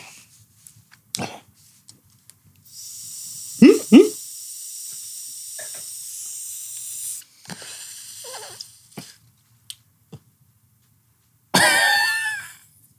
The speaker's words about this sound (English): Folks, if you would you like the audio of what he's doing, as I narrate what he's doing, he took a long pull off a pen. And he's now done exhaling.